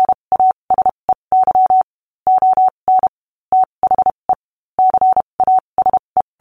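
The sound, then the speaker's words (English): A steady-pitched electronic tone keyed on and off in Morse code, quick short dots mixed with longer dashes, clean and loud with brief silent gaps between letters, no voices. “Today he is remembered primarily for the code system that bears his name, Morse code.”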